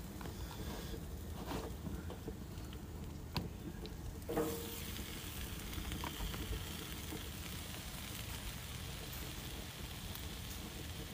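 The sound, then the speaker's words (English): Steady, crackling sizzle of food cooking on a hot outdoor grill, a continuous dense hiss with a few sharper pops and a brief clatter midway, with no one talking. “Oh yeah, I'm outside, I'm grilling, so y'all gonna get some sizzling aesthetic.”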